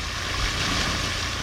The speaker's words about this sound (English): In the landscape campus of one of the laboratories that made the detection, a fountain sprays jets of water skyward, which are pulled back down by gravity, sending ripples across the crystal clear pond.